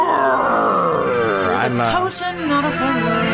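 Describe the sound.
A man's voice growls and roars in a drawn-out, strained howl, imitating a werewolf transforming under a full moon. Loud, it rises and wavers for a few seconds without any clear words.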